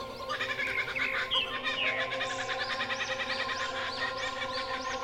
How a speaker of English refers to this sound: Oh, good. The birds are collaborating. Sweet.